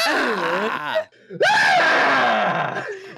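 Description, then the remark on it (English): A man's voice imitates the Howard Dean screech: a high-pitched, strained scream in two loud bursts separated by a brief silence, the second a rising, drawn-out yell with a raspy edge. “It's like fucking the Howard Dean screech.”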